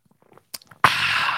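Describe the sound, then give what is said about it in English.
Someone takes a sip: a few soft, wet slurping and lip sounds and a small click, then a loud, breathy exhale that carries on to the end. “That felt like the sip of the day.”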